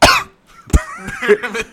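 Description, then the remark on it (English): A loud, deliberately performed cough, read aloud for the character Merriman as he enters a scene in a play: a harsh burst, a brief pause, then a second sharp cough that trails into a rough, throaty rasp. “When he enters, he coughs loudly, seeing the situation.”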